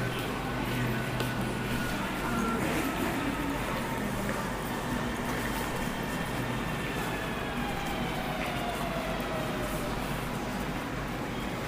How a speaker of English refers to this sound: That's the sound of the train coming in, right there.